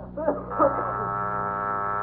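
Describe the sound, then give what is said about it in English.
A doorbell buzzer at a house next door, rung by Costello, rings in one long, steady, coarse electric drone that holds at an even level throughout, with a brief murmur of voice over its start. “Take it off the buzzer.”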